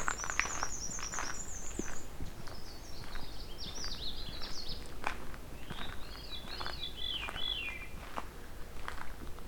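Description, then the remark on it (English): Several woodland songbirds sing in a swampy section of forest, a Canada warbler, a veery and a black-and-white warbler, their high, clear phrases overlapping over a steady rustle of forest background noise. “Canada warbler and veery and black and white warbler.”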